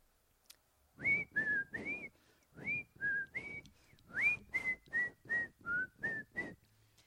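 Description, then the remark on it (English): Someone whistles the tune This Old Man: about a dozen short, breathy notes in a steady, bouncy rhythm, fairly loud, with no talking. “So old man gets up and slowly walks upstairs, whistling.”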